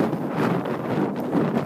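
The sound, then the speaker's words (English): Steady, loud wind buffeting a microphone outdoors in windy London while recording a voice memo, a dense low rumble with gusty surges and no clear voices coming through. “But I don't know if you realise it's been super windy in London recently, so this is how the last voice memo turned out.”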